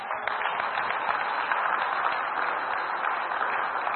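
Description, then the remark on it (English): A crowd of husbands claps steadily for their wives, a dense, crackling wash of many hands that holds an even level for the whole stretch without rising or fading. No one speaks over it. “Let us husband clap for their wives.”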